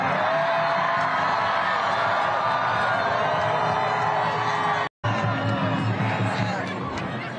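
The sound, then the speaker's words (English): A large crowd cheers loudly and continuously in response to the word genocide, with rising whoops and yells cutting through the dense roar; the noise breaks off for an instant midway, then resumes just as strongly. “It's that word genocide really gets the crowd riled up, really gets the people going.”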